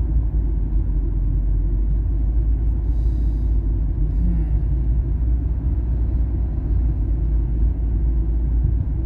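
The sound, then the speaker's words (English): A pickup truck passes on the road, its deep engine rumble loud and steady for the whole stretch, with a faint higher hiss briefly rising over the low drone. “Pickup truck just passed me.”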